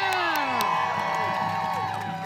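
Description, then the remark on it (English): A large crowd at a street demonstration cheers loudly, many voices whooping and yelling at once over scattered clapping, the roar holding steady for the whole couple of seconds. “Give yourself a round of applause for being here.”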